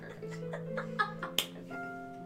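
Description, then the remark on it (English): A toy named Simon McFlipperson clapping its flippers: two or three quick, sharp plastic clacks, loudest near the middle, over a background of voices and a little laughter. “Just gives you a little clap and it dives in.”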